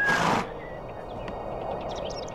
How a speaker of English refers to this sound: So listeners will hear it. This is you getting on a horse in Two Worlds.